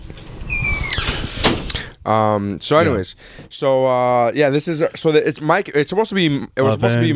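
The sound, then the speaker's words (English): A door squeals on its hinges and shuts with a solid thunk, and then people start talking right after it closes. “Hey, close the door, please.”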